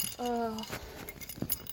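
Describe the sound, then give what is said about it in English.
A bunch of keys jangles in short metallic bursts, following a brief voiced sound at the start. “I've got …'s keys! Yeah, give me my keys!”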